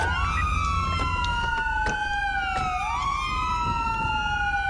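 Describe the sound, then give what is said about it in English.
A police car siren wails steadily, its tone sweeping slowly up and down over a low engine rumble, loud throughout with no pauses. “Be advised, suspect down, hold fire, siren check.”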